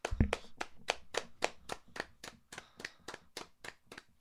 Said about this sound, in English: I'll make fire. I'll make fire right now. I'll show you how I make it. I just clap until fire appears.